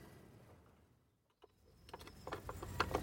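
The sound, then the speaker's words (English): An old screwdriver turning as garden furniture is assembled: after a quiet moment, a run of dry ratcheting clicks and small knocks starts up and grows louder and busier. Nobody speaks. “I can put some garden furniture together, you know. I'm sure you can, but my drill's a bit faster than that old screwdriver.”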